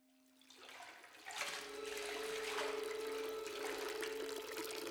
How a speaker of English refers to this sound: loved watching the water flow into the basement of Lawang Sewu, the pristine and magnificent headquarters of the Dutch East Indies Railway Company.